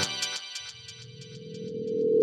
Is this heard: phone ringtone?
yes